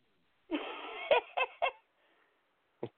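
A caged pet bird lets out a harsh, raspy squawk that breaks into several choppy bursts, then a short, sharp call follows after a brief pause, after breaking its toy, whose bell fell to the bottom of the cage. It is fairly loud, with no talking.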